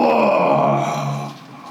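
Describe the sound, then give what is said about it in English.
A loud, sustained guttural yell from a single voice, rough and low-pitched, holding steady for over a second before trailing off into a quieter, strained tail. “And you see that the body language of both the giant and Jador have gone from posturing to very aggressive until finally all of you hear Jador give this sort of guttural yell.”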